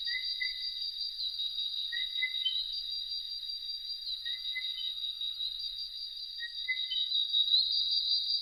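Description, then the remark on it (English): Tree frogs calling in a forest at night on a little-known island: short, rising whistled chirps repeat about every two seconds over a steady, high-pitched insect-like trill, with no voices. “So the sounds of the forest by night are dominated by tree frogs.”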